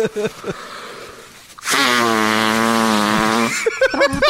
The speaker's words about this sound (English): I did, however, say I was going to own up to this meme, so I'll give you all a drop of me blowing my nose.